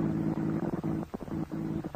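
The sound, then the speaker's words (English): A car motor sputters: a low, steady droning hum that repeatedly stutters and cuts out in uneven bursts before catching again, with no voices. “The motor knows Morse code.”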